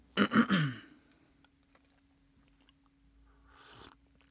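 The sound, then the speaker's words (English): Wet slurping sips of hot tea: three quick bursts right at the start, then a pause and a softer sip or swallow near the end. No one speaks. “I'm going to grab a sip of tea.”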